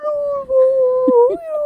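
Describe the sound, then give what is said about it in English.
A voice imitates a space whale with a long, steady, moaning tone that holds for nearly two seconds, with a brief upward bend in pitch near the end. It is clear, with no talking. “They just make whale noises.”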